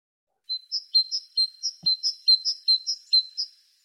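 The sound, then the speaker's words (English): A bird chirps alone in a quick, steady series of about a dozen bright, high notes, each one clear and evenly spaced, then stops. “Chirp, chirp, I got one more.”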